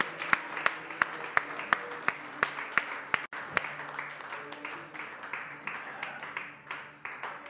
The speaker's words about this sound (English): Give an applause to our God who's worthy of it all and who's glorious.